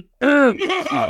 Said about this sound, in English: Excuse me. Let me. I'll have a drink. Go ahead. Cough it out.